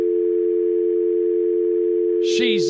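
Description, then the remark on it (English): A steady, unbroken telephone dial tone hums at moderate volume for a couple of seconds, then a voice cuts in abruptly right at the end. “Hang up that phone.”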